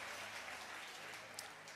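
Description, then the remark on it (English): An audience claps their hands in a steady, dense wash of applause that stays at an even, fairly soft level throughout, with no voices on top. “Clap your hands if you receive that.”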